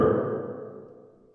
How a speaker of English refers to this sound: Like, I have a new new reverb button.